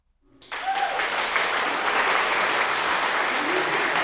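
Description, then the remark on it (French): A burst of applause starts abruptly after a brief silence, then holds as a steady, dense wash of many hands clapping at an even loudness until the end. “Ils vont pouvoir applaudir à l'Assemblée.”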